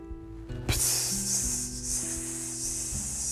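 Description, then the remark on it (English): A man's voice imitates the sound of a long urine stream in a restroom with a long, steady, bright hiss that starts abruptly and runs unbroken for nearly three seconds over a low, steady tonal hum. “I'm always like going to the bathroom and pissing”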